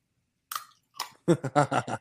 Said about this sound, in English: It's still got a bit of chew on it. Actually has a little bit of chew to it still. It's not just crumbling in my mouth.